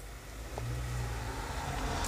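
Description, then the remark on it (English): A car drives past, its engine a steady low rumble that swells and holds across the short stretch, with no voices over it. “It's car pass.”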